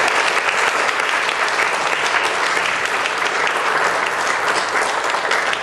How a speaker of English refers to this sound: What I want the one standing to do is to clap for those that are sitting. Is what I want you to do.